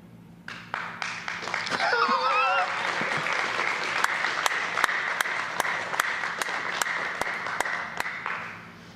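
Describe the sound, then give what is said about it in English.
A church audience breaks into steady applause during a sermon on a psalm calling people to clap their hands, many hands clapping together for several seconds, with some cheering and voices mixed in near the start before the clapping fades out. “It says, clap your hands.”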